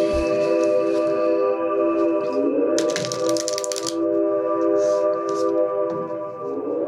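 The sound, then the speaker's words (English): A deck of tarot cards is shuffled before a three-card reading in a quick, crackling riffle of papery snaps lasting about a second, over a steady humming tone in the background. “Okay, I'm shuffling.”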